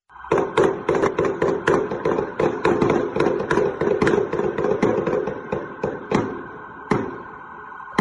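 Rapid, irregular volleys of loud gunshots crack one after another for several seconds during a gun battle between police and a shooting suspect, dozens of sharp reports overlapping, then thinning to a few scattered shots near the end.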